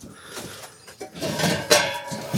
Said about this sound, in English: And I'm going through the little green door into the chicken house.